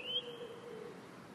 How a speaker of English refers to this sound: That robin, I love that robin. He's still singing himself, he is.